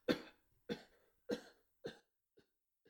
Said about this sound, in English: Do you hear that cough? Hope he's alright. He got out of a sick bed to come here this evening, you know. He said that touch of malaria he had never really left him.